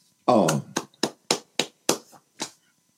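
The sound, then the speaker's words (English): A brief voiced sound, then a speaker claps about seven or eight sharp times in a fairly steady rhythm after the saying "use things, not people", each clap crisp and fairly loud, ending with a softer final clap. “I'm going to clap on that one.”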